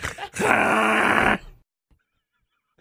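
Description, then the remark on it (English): A voice imitates the noise of a modification on a car that sounds like the brakes locking: one sustained, strained, groaning screech lasting about a second, harsh and loud, then cutting off into silence. “They were like, wow, look, I got this new mod on my car and it does this like noise. It sounds like the brakes locked.”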